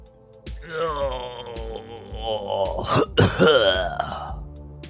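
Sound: sneeze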